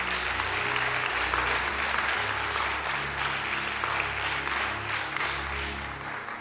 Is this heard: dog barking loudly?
no